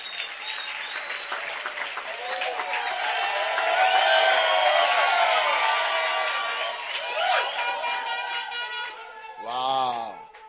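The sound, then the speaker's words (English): A crowd claps and cheers for the people from Uganda in the audience for about ten seconds, the dense applause swelling in the middle with shouts and whoops mixed in, then fading before a brief burst of voice at the end. “Oh, clap for the Ugandans.”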